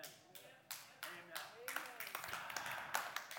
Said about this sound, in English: I'm not usually this guy, but that deserves far more of a round of applause than you gave it.